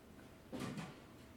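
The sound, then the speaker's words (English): The door of a small black and silver refrigerator, next to a freezer, opens and closes in one quick, soft motion, a brief muffled thump with a light rattle, fairly quiet against a low background hum, with no one speaking. “Not the freezer, the refrigerator right next to it, to the right.”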